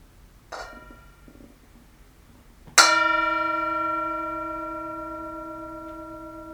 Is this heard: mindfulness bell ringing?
yes